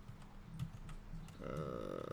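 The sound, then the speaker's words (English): A handful of scattered computer keyboard key clicks tap out irregularly as someone searches for a game, over a low background hum, then a buzzy, droning electronic tone swells up and continues beneath the last few keystrokes. “Where's the I on my keyboard?”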